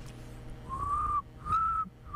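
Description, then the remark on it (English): A person whistles an imitation of cricket chirping: two sustained, steady high notes about half a second each, with a third beginning at the end, over a low background hum. “I want to show you guys, I learned how to make cricket sounds.”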